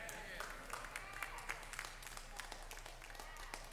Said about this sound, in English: Thank you for your pitiful applause.